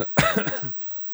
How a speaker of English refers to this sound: Oh, have you never coughed so hard you give it a headache?